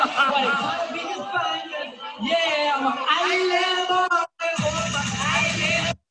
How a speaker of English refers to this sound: So okay, hold on. So the people are booing. Yeah, so it didn't go very well.